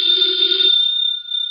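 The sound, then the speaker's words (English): A telephone bell rings loudly and steadily, a sustained metallic trill that continues through the whole moment with a brief dip before resuming. No one speaks. “Should never ignore a phone call.”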